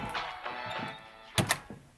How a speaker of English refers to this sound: She exits into the garage and clumsily closes the door behind her, but I don't follow her out.